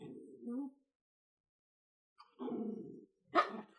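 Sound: dog growling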